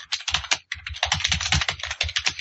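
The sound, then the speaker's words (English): Rapid, steady clatter of typing on a computer keyboard while googling the French film The Beast, dense clicky keystrokes in quick bursts with a brief pause partway through, fairly loud and with no voices. “Googling monster movie, The Beast French Horse Sex.”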